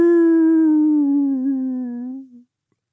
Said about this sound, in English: The wolf howled again, much louder. Hadrian stopped Royce by grabbing his arm. That's it. It's in the house, yeah. Can't be a wolf, then. Has to be a dog.